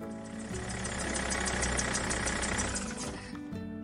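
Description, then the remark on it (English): A bus's large diesel engine idles steadily after the bus has stopped, a continuous low rumble with a rhythmic knocking pulse and faint high whine, fading slightly near the end. “The bus has stopped finally.”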